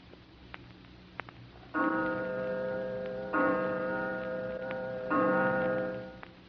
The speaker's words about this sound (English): As the clock strikes, Star, the world's largest selling single-edge razor blade, presents that noted war correspondent and journalist, whose predictions of today may become history tomorrow, Wise Williams.